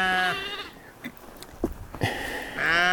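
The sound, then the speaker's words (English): A sheep bleats loudly, two drawn-out wavering calls separated by a brief pause filled with faint rustling and soft thumps. “Even the sheep hate this chapter.”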